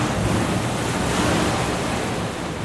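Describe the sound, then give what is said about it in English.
Rough sea surf churns continuously with gusting wind roaring over it, a loud, dense wash of noise with no voices, like a raging storm at sea. “For weeks on end, they endured raging storms at sea.”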